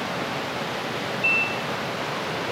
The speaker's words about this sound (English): The beeping, which you can hear, is our gas detectors, which is just checking the atmosphere.